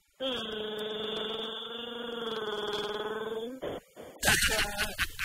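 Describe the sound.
A voice imitates Chewbacca gargling mouthwash: one long, steady, throaty growl held for about three seconds, followed by a brief burst of rough, noisy sputtering.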